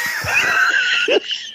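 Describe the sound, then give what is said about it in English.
A person voices a short, high-pitched startled scream, loud, sustained for over a second with a wavering strained tone before cutting off abruptly, imitating an internal scream on thinking a drink had been knocked to the floor. “So what you didn't hear was the internal scream of ah!”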